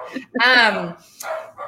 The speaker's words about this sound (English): Sorry, my dog has decided to bark.